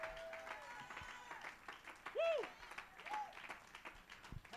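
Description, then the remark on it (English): A church audience claps together in a steady, dense wash of applause, with voices calling out and rising over the clapping. “Somebody clap your hands and give God the glory.”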